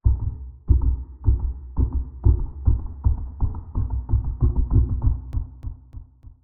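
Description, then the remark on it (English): A deep, booming heartbeat thuds steadily, then quickens, the pulses crowding closer together until they pound rapidly. Loud and alone, with no voices. “Then we hear heartbeat. Then we hear it go faster.”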